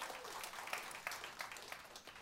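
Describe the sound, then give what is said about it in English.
A burst of audience applause, dense overlapping claps spread across the full clip at a fairly steady, moderate level, sounding like a roomful of people clapping together. “Yeah, we clap for that.”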